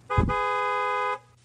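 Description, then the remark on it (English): A single sustained car horn blast, loud, lasting about a second with a sharp onset and abrupt cutoff, sounding alone with no voices. “Honk your horn right now if you're listening in your car.”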